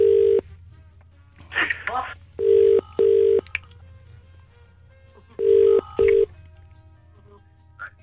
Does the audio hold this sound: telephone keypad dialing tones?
yes